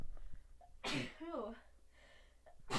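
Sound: human sneeze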